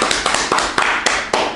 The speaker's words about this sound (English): So, round of applause for all of those guys.